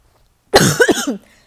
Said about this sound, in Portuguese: A gente desculpa a minha tosse, sério mesmo. Mas eu tô realmente, às vezes não tô dando conta aqui com a minha tosse.